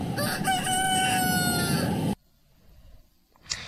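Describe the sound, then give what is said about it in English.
A rooster kept as a store mascot crows loudly in one long, strained cock-a-doodle-doo lasting about two seconds, followed by near silence and a brief faint sound at the end. “It's like he want everybody to come see him, look at my feathers, listen to me crow.”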